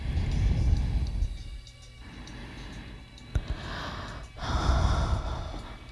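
Heavy, breathy inhales and exhales on a recorded music track repeat, with gasping, snorting edges and short pauses between breaths; the breathing runs low in the mix throughout a six-minute track. No one speaks.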